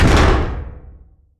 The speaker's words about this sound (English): When she got no answer, she lugged a metal chair over and tossed it against the door.